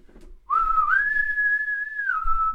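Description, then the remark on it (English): A loud, sustained human whistle blown into a microphone, on a single high tone, rising slightly near the start and holding steady for about two seconds before tapering off. “And then they do, we hear a big old whistle. Can I do it on mic?”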